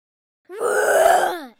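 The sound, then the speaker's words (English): A child takes a deep breath and lets out a single loud, drawn-out roar imitating a lion, a gravelly voiced growl rising and then trailing off over about a second, with no talking. “Take a deep breath in and roar.”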